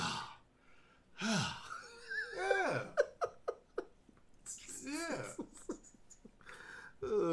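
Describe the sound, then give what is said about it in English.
A man vocally imitates the heavy, exaggerated breathing of another man doing work: loud, drawn-out huffing breaths with a rapid burst of short panting gasps in the middle, without any words. “He was over there breathing too. I heard him. He was over there doing this.”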